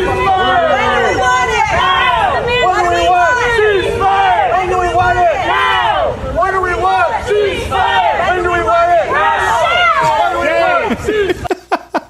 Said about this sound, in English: Just waving an Israeli flag at him as the crowd of young baristas start shouting shame.